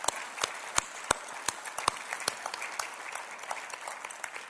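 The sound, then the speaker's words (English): An audience applauds teachers (homeschool, band, chorus, Sunday school and Awana teachers) steadily, with many overlapping claps forming a dense patter and a few sharper, louder claps standing out, at a moderate level with no voices. “And now we clap.”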